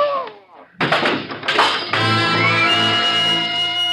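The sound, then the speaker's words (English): A heavy body slams into a table with a loud crash, followed by the clatter of a lamp knocked to the floor, after a brief voice; sustained dramatic music then swells underneath. “crashes into the table and knocks the lamp to the floor.”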